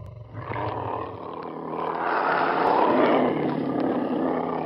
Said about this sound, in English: Roars echoed outside as the other seekers joined in. Parents started looking around apprehensively when they realized there must be several large cats just outside.